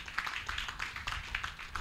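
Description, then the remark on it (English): An audience claps for the Lord during a sermon, many hands producing dense, crackly bursts with a loose, uneven rhythm, fairly soft overall, with a low murmur beneath and no clear speech. “Oh, give the Lord a clap of it.”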